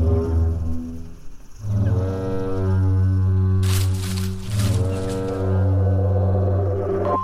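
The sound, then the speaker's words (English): Deep, resonant calls of a grazing herd of crested duck-billed dinosaurs, long honking bellows like a foghorn, sounding in about three overlapping waves with a rough, breathy rasp midway through. “Those must be duck-billed dinosaurs, and they're making noises.”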